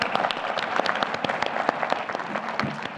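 An audience breaks into steady applause, a dense wash of many hands clapping at a fairly even loudness for a few seconds, with a faint voice briefly audible underneath.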